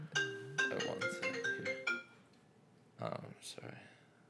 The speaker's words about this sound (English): Your phone's going off during your podcast, dude.